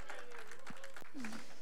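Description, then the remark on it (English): A church audience claps their hands in praise of Jesus, a steady, dense wash of applause with voices calling out and shouting over the clapping throughout. “Give King Jesus a hand clap of praise.”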